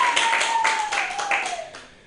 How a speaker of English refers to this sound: You guys clap if you want me to do one more. Yay! Yay!